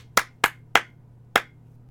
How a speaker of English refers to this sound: involuntarily applauds, realizes his mistake of rooting against his employer, and stops applauding.